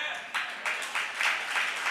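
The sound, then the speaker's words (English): An audience claps, a steady wash of many hands with a dense, crackling texture that swells in gentle rhythmic surges over about two seconds, without anyone speaking over it. “Don't clap.”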